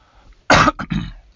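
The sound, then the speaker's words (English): A loud cough bursts out, followed by two shorter raspy coughs in quick succession, with no talking around them. “And I apologize for the coughing I'm having to do here, right in your ears.”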